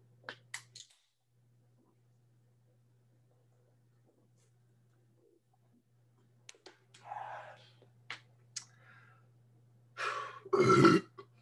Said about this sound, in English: You got to get those burps out. There might be a couple more that pop in and out throughout the rest of this podcast, but I felt good, and I feel good.